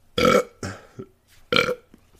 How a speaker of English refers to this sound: Oh, there we go. Hold on, burps.